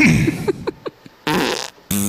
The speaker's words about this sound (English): All right, I'll give some farts for you.